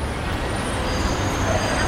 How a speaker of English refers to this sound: That is the sound of traffic on the embankment. Black cabs, London sightseeing buses, white vans.